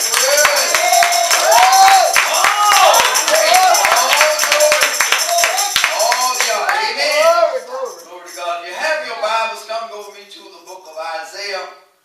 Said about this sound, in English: Just bless God. We appreciate it. Y'all just give one more hand clap of praise.